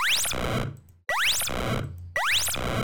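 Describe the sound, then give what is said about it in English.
A synthesized retro game coin sound effect, made by combining three tones together, plays three times in a row, each a bright, rising electronic chirp with a buzzy, fading tail, with no talking. “It takes three tones together to make this one sound effect.”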